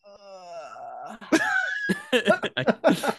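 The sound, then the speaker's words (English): A drawn-out, voiced yawn with a stretch: a long sustained groaning tone that wavers and rises, followed by several breathy, strained bursts as the stretch ends. No speech. “Parting yawn. Stretch yawn.”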